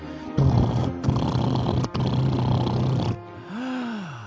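A jackhammer digging a tunnel underground beneath a house pounds in three loud, rough bursts with brief pauses between them, then cuts off, leaving a low rumble and a swooping tone at the end. No one speaks.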